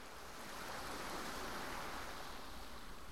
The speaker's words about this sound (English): I've been to tons of beaches on the peninsula, but Rialto Beach, the combination of the steep beach with the waves crashing and the gravel, it's just this constant sort of sonorous crashing background to your thoughts.